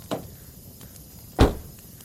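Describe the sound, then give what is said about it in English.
A light click, followed a second later by a heavy thud as a car door is shut after someone gets into the car, with quiet background between the two sounds and no talking. “Here, get into the car.”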